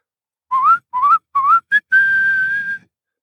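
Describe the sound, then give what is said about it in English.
A person whistles a short tune with their lips: three quick rising notes, a brief chirp, then a long steady held note, clear with no talking. “the only one left seeking advice in the great hall was a little porcupine wanting to learn how to whistle”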